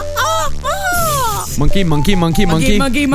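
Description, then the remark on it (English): A voice imitates a monkey, starting with high, wavering whoops that slide up and down, then breaking into a quick run of rhythmic, choppy hoots, loud throughout. “Yeah, I can't do robots, but I can do you a monkey.”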